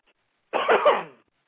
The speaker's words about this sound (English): I've got a frog in my throat, so if you would pardon me a second while I clear my throat.